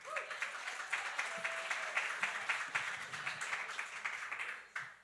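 An audience at a live show applauds steadily to welcome a woman whose name was pulled from a hat during intermission to share her dating stories, a dense patter of many hands clapping at once, holding even for several seconds before tapering off at the end.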